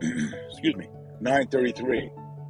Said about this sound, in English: Taking a big gulp of coffee, and I went down the wrong pipe there. I apologize for the choke, if you will.